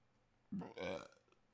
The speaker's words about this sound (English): I'm tired. I got a burp.